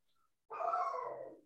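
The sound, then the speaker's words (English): A dog named Oliver lets out one loud, drawn-out bark, bursting in abruptly after a moment of near silence and trailing off after about a second. No one speaks. “I think the dog disagrees.”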